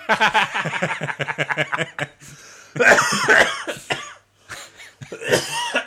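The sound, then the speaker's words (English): A loud coughing fit: a rapid string of harsh coughs, then a pause and a few heavier, hacking bursts with throat clearing, all on its own without speech. “Okay, whooping cough.”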